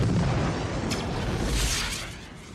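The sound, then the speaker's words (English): A flare explodes with a deep, rumbling boom and crackling bursts of hiss, sustained for a couple of seconds before slowly fading out. No voices are heard. “Oh, they show the flare explode.”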